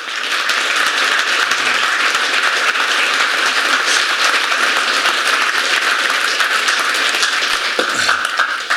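An audience at an evening talk at Brooklands claps steadily to welcome a speaker, a dense, even patter of many hands that holds at full strength for the whole stretch with no voices over it.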